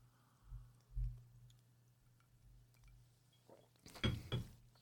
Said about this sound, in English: So I just had to take a drink there. Cheers.